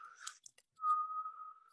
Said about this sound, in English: It's not really strong. So, okay, you can say I can't, but I can a little bit. That's definitely a whistle.